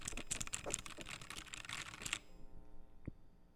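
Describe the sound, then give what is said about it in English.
Rapid clatter of computer keyboard typing, a dense burst of key presses for about two seconds that stops abruptly, followed by quiet and one lone click near the end. “I hope y'all heard the keyboard noise at least, because I just spammed that Windows error noise in my headset to make that happen.”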